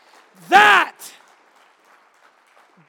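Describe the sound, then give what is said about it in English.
A single loud, rising cheer or whoop bursts out briefly, followed by a sharp clap-like crack and then a low, faint murmur of crowd noise, as a standing audience cheers that a daughter in Christ has been found. “If you're going to cheer that a daughter in Christ has been found, louder!”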